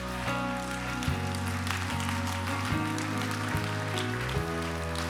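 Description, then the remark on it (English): In a church, an audience stands and applauds those who raised their hands, a steady, dense wash of clapping that holds for several seconds, while sustained low keyboard chords shift underneath. No one speaks. “Can we all stand to our feet and give a round of applause to those who raised their hands?”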